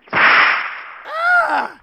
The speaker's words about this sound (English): that rawhide lash in Chet's right hand flew across the room and bit into Lafitte's wrist.